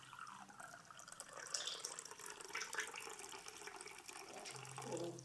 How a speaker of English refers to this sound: And then he took this cup right here, something similar, and whatever liquid was on the table, maybe it was juice, maybe it was wine, maybe it was water, and he poured it into a cup.